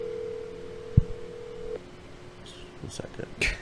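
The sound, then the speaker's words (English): A phone line's steady tone hums for a couple of seconds, broken by a sharp click, then fades into a few quick dialing beeps and clicks as someone phones their grandmother for a short call, with faint voices in the background. “Let's are you calling your 20 grandma? 20-second phone call.”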